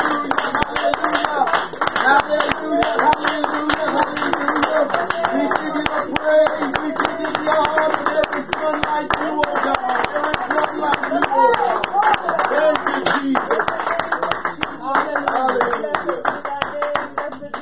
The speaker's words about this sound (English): Will you clap your hands unto the Lord? Hallelujah, hallelujah.